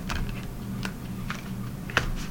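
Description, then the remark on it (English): Tarot cards being shuffled: a handful of soft, crisp flicks and taps at uneven intervals, one slightly sharper snap near the end, over a low steady background hum, with no talking. “Gonna do three rounds. Shuffle. Shuffle to shuffle.”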